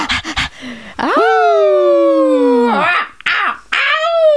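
A long, drawn-out wolf howl holds a steady, bright pitch before sliding downward. A second rising howl follows after a short pause, with a few breathy bursts before the first.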